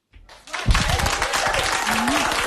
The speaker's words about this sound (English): Now, there was applause, as you just heard, but apparently her sorority members, people that knew this was coming. Her mom was in the audience. So she kind of packed the room with her supporters.